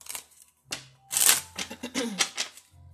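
A deck of tarot cards being shuffled, a fast burst of riffling flutters and soft slaps that swells loudly in the middle and tapers off at the end.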